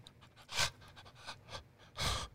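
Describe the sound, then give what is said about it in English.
Heavy, breathy panting from a single person, several rough exhales in an uneven rhythm, with two especially loud, forceful breaths standing out. No talking. “Yeah, if you're not breathing hard, you ain't doing it right.”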